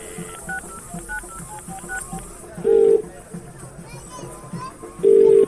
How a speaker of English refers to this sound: I'm going to call Marcus right now.